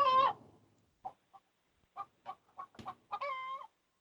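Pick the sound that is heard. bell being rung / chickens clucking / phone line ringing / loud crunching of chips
chickens clucking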